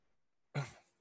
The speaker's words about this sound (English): But they weren't able to hear too much of that coughing